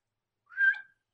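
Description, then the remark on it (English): A man gives a single short, soft whistle, a brief tonal note that rises slightly and fades after about half a second, with no other sounds around it. “He gives out a little whistle from the back.”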